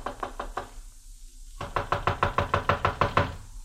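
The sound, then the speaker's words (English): A rapid series of knocks on the wooden door of a houseboat anchored on the Nile, one short burst followed by a brief pause and then a longer run of about ten steady raps. “I walked up the narrow awning-covered gangplank that led to the little deck and knocked at the door.”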